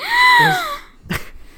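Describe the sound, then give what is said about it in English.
A single dramatic, surprised gasp, voiced and drawn out with a falling pitch, fairly loud, then a brief breathy puff of air before quiet. “I thought that was going to be a together gasp, you know?”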